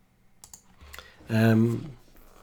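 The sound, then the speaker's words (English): A few scattered, soft computer keyboard and mouse clicks as someone brings up historical data on a computer, with a brief voiced hum from someone partway through, followed by more light clicking. “Excuse the clicking now, but I'm going to bring up this historical data that I was looking at.”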